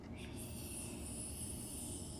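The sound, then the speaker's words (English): A child's voice imitates an airplane with a steady, rumbling buzz, held evenly for about two seconds and fairly quiet, with no words spoken. “I see airplanes. What does an airplane do?”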